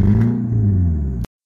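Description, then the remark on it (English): A car engine revs loudly with a deep, steady rumble and rising harmonic whine, holding for about a second before cutting off abruptly into silence. “This car this evening, ladies and gentlemen. Thought we'd have that right in front of this week's podcast on some tactical driving.”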